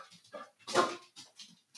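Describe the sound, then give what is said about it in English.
Overexcited female dogs being let out whine and whimper in a quick series of high, nasal cries, with one louder, strained yelp-like whine in the middle, with no talking. “The dogs are like, she does slay.”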